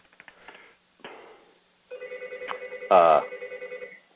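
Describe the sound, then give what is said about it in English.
A telephone rings in the background with a steady electronic trill, repeating rapid pulses at moderate volume, preceded by some faint clicks and rustling; no one speaks. “Phones ringing in the background.”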